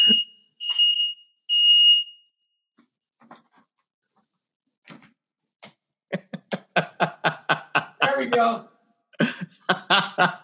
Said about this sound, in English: runs for safety with the fire alarm